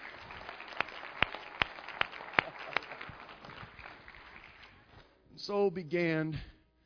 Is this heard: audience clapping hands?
yes